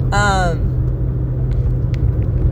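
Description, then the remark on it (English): A car rumbles by outside, a deep, steady low drone that fills the whole moment, with a brief voiced sound near the start. “That car, like, made me lose my train of thought.”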